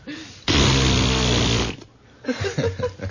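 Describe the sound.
A loud, buzzy blown raspberry lasting a little over a second, rough and flapping with a low pitch, then a brief pause before someone starts talking.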